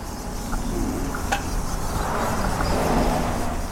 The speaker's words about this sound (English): And we're right by the highway, so there's cars whooshing past.